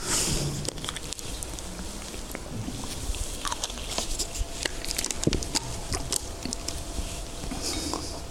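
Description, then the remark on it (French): Someone pauses to take a small sip of a drink, with soft slurping and mouth noises among light clicks and rustles over steady background hiss, and no talking. “Attendez un peu, là, je vais prendre une petite gorgée...”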